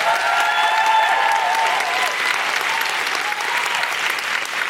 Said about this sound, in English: Could I have a big, big round of applause